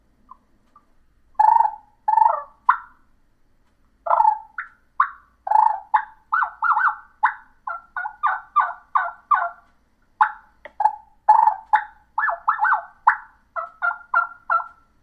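Turkey hen calls: a soft whine followed by a steady string of short, gentle yelps and rolling purrs, repeated in quick clusters with brief pauses, no talking.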